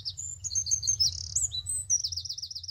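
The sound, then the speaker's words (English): Birds sing continuously in the morning in bright, high warbling phrases, one voice trilling in a rapid repeating wavering pattern near the end, over a steady low rumble in the background. “And oh my God, the birds singing.”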